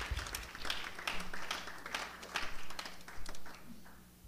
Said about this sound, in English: Clap your hands to the Lord.